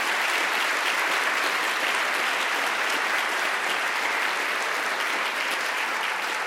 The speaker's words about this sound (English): If we can have one more round of applause for all of our students, thank you so much.